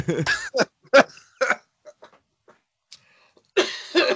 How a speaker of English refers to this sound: Okay. Excuse me. I was coughing.